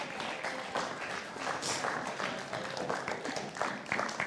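An audience applauds steadily, many hands clapping together in a dense, crackling wash that holds at an even, moderate loudness for the full four seconds.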